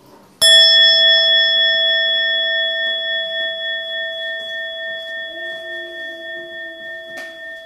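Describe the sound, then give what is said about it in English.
A single mindfulness bell is struck once, sounded for the second time, ringing out with a sharp attack and a long, shimmering sustain that slowly fades with a gentle beating pulse. No one speaks. “And then you invite the second sound of the bell.”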